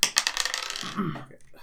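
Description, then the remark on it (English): Dice, including a d10, are rolled twice and clatter across a table in a quick burst of sharp rattling clicks, bouncing and settling within a second or so, fairly loud, with faint murmuring voices afterward. “So I roll twice and take the lowest. No, you roll twice and go on both.”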